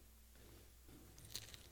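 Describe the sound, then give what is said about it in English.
Quiet crunching and chewing of a crisp matzah sandwich with horseradish and haroset, with one sharper crunchy bite standing out near the end; no talking. “Take your time. Please chew.”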